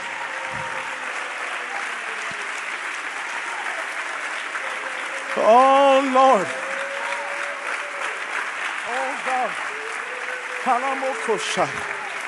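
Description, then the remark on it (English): An audience claps steadily throughout during a praise break, a dense, continuous wash of many hands at an even level, while a man's voice calls out loudly a few times over it. “Come on, I need you to clap from the front to the back.”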